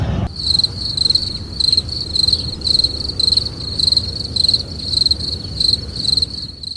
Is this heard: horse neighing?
no